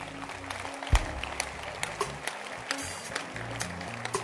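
An audience claps their hands in a dense, steady burst of applause, many overlapping claps forming a continuous crackle with a few sharper loud claps standing out.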